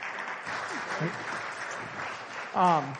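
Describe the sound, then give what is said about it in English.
Soft, polite golf clapping from an audience welcoming a woman coming up to speak, a steady patter of light claps throughout, with a brief voice breaking in near the end. “Let's give her a golf clap as she comes.”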